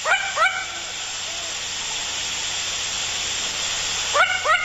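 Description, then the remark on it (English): Sharp, yelping alarm barks of a long-eared owl in two quick pairs, one at the start and one near the end, fairly loud over a steady background hiss. “And when alarmed, it barks like a dog.”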